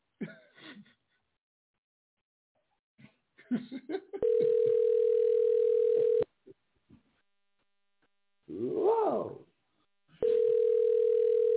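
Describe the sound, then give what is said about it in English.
A phone line's ringback tone sounds twice as someone calls a person back, each a steady two-second burr separated by a long pause, with a few breathy noises and a throat clearing in between. “Now I got to call him back and let him know it was a prank.”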